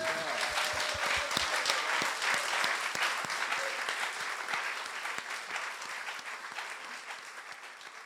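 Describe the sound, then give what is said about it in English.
An audience at a Midtown Scholar Bookstore author reading claps steadily and continuously for the author, dense overlapping hand claps at full volume that taper slightly toward the end, with no voices standing out. “Can we give a big round of applause?”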